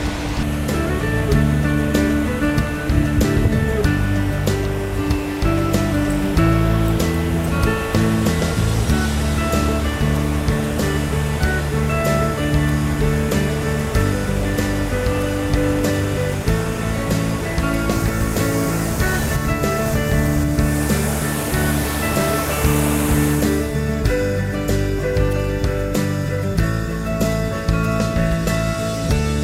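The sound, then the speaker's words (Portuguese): A waterfall roars steadily throughout, a dense, continuous rush of falling water that briefly swells louder near the end, with sustained tonal layers humming underneath and no one speaking. “Super bonito aqui, olha lá, as cachoeiras. Em português, nós chamamos isso de cachoeira, fall, cachoeira.”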